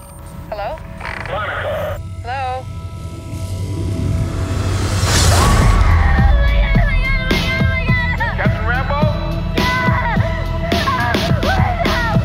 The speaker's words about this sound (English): All right, so look, the reason why I wanted to show that clip is that person you hear screaming, and you even hear like the screaming and the little, like her breathing in or whatever, and it just sounded amazing.